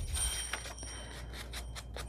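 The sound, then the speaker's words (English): The bell in a 12-year-old pet parrot's cage jingles in quick, irregular bursts, each a bright metallic tinkle over a steady low hum. It is fairly quiet, and no one is talking. “My musical accompaniment, my bird and his bell, his cage bell, poor guy.”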